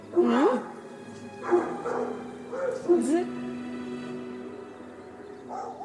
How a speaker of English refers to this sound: I can hear a dog. Where's the dog coming from?